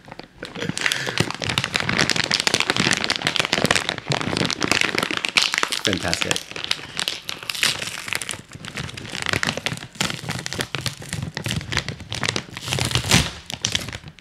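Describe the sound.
A crinkly bag of kettle potato chips is torn open and rustled, giving dense, sharp plastic crackling that runs continuously and loudly throughout, with a voice speaking briefly over the noise.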